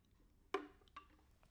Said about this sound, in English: A little sip of my water.